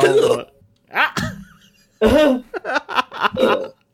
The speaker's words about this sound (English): Excuse me. Got hiccups for a second.